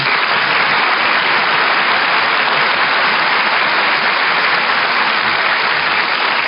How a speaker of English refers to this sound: did you hear that applause, Mary? Everybody's glad to see you.